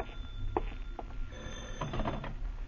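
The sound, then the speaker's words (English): A telephone bell rings in short repeated bursts, moderately loud, over a low rumbling background with no voices. “By noon, you still have no answer, and then the phone startles you, but you manage to answer.”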